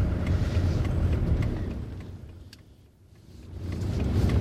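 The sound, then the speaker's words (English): Low, steady engine rumble from inside a car crawling at barely a mile an hour through lunchtime traffic and roadworks in Dunstable, easing off briefly mid-clip before building again, with faint clicks and rattles over the drone and no talking. “I'm barely doing a mile an hour, just very slowly crawling along.”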